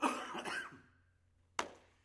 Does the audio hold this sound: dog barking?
no